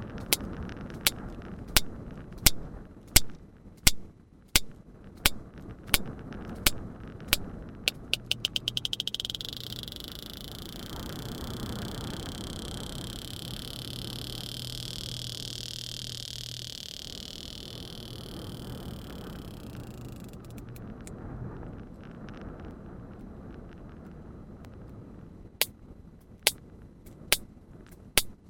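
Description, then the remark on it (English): Sharp sperm whale echolocation clicks tick at a steady pace, then speed into a dense buzzing rattle as the whale attempts to catch prey, lasting several seconds over an underwater hiss, before slower, spaced clicks return. “But yeah, basically a buzz of clicks means that they are attempting to catch a prey.”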